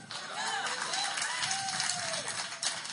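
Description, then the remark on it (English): An audience claps steadily in a dense, continuous patter for several seconds, with a few voices whooping and calling out in rising and falling tones over the applause. “Somebody clap.”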